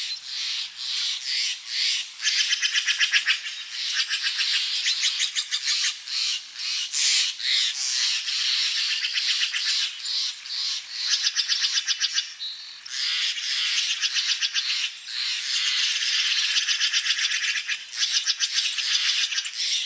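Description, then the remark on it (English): Dense, continuous morning chorus of raspy, chattering calls of birds and other creatures in the valley along the banks of the Russian River, just north of San Francisco; bright and high-pitched, with rapid rattling pulses and harsh squawks layered together throughout, no voices present. “Ed Herman collected these calls of birds and other creatures that echo each morning through the valley.”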